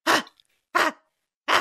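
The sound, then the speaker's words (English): A person imitates their dog Brenda barking when upset, with three short, loud, breathy barks, evenly spaced about two-thirds of a second apart, with no other talking. “When she gets upset and she starts barking, that aggravates the potential for illness.”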